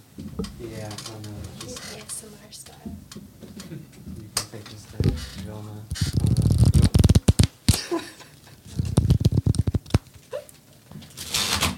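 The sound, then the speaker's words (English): A new deck of playing cards being shuffled: two quick riffling bursts of rapid flapping clicks, with people chatting before and between them. “Oh, I mean, it's just shuffling cards.”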